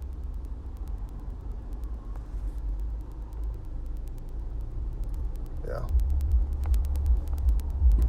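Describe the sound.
Steady low rumble of rush-hour road traffic, with about ten cars passing while a driver waits to let them by, swelling louder near the end, with a brief spoken word over the noise.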